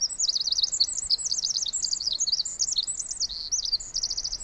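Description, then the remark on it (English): A tiny wren on a branch about 3 feet away in a forest sings loudly, pouring out a continuous stream of rapid, high-pitched trills and twittering phrases with no pauses and no voices. “Just then, a tiny wren flies down and lands on a branch about 3 feet away from us and just lets it all out.”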